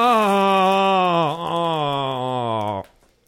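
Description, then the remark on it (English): A chair creaks loudly as someone leans back: one long, groaning, tonal creak lasting about three seconds, its pitch wavering with a brief dip midway before it stops abruptly. “The number of people who have sat on that chair without it making noise.”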